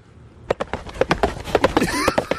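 Galloping horse hooves of a horse out of its paddock getting a morning ride, beating in quick, uneven triplet-like clusters, sharp and fairly loud, starting after a brief quiet moment and continuing steadily to the end, with a faint tonal murmur in the latter half.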